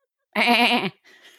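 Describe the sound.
A voice mimics a goat with one loud, quavering bleat lasting about half a second, followed by a brief faint breathy rustle.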